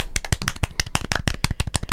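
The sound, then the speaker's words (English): A small group claps for about two seconds, a quick, irregular patter of sharp, bright hand claps at steady loudness, with no talking. “Let's clap.”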